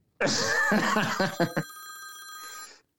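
A telephone rings once with a bright electronic tone as a call comes in again during a live show: a busy, warbling burst of chiming notes that settles into steady high pitches before cutting off after a couple of seconds.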